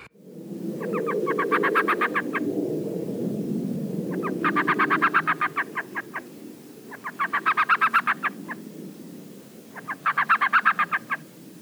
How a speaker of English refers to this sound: So flip through your ID guide right now and find the little elf owl. Note the markings around the eyes. That's the easiest way to tell them from something like a screech owl. And we're going to play the call for you now.